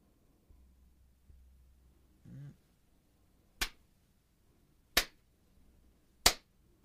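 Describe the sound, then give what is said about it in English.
Three sharp, loud hand claps made to sync audio with video, evenly spaced about a second and a half apart, each a crisp snap over a faint low hum, with a brief muffled thump just before the first. “We just had the clap for the sync up the audio to the video”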